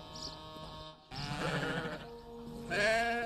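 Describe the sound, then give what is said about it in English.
Several sheep bleat in quick succession, wavering nasal calls overlapping one another, with a louder, closer bleat rising at the end. No one speaks. “Anglo-Saxon England was rich, and that depended largely on sheep.”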